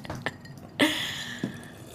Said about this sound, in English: Oh, with the slurp. With a little ASMR.